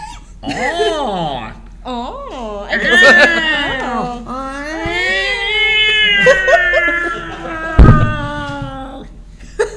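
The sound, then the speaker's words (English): A person's voice imitates an alley cat with drawn-out, wavering yowls and meows that rise and fall over several seconds, loud, punctuated by a brief thump near the end. “Do it as an alley cat.”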